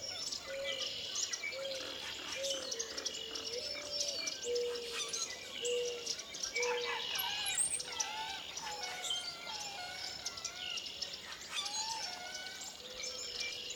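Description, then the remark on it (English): A dense outdoor chorus of many birds calling at once at wetland pools (red-winged blackbird, mourning dove, common moorhen, common grackle, common yellowthroat and other species), with a repeated low cooing running through it and harsh, squeaky calls and bright trills layered above, steady and busy throughout. “at the pools is impressive, with red-winged blackbird, mourning dove, common moorhen, common grackle, common yellowthroat, and a variety of other species sounding off with gusto.”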